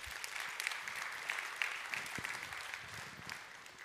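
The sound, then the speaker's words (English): An audience gives the Lord a big round of applause, a dense, steady wash of many hands clapping that holds its level for several seconds before easing off slightly at the end. “Can you give the Lord a big round of applause here today?”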